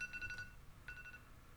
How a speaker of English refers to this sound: God damn it, my alarm just went off.